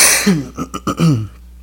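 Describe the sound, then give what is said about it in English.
A person just coming off a throat infection coughs and clears their throat in another person's direction, a short burst of several rough, hacking pulses over about a second before trailing off into quiet. “You fucking coughed right in my fucking direction, you fucking pig.”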